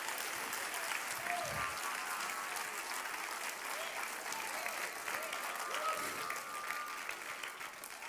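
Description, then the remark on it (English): An audience claps hands at a preacher's call, a dense, continuous wash of applause at an even loudness with scattered voices and cheers mixed in throughout. “Come on, clap your hands.”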